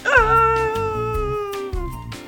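An office chair gives a long, steady squeak that slowly drops in pitch, over a series of rhythmic low bumps as it rolls, followed by another short squeal.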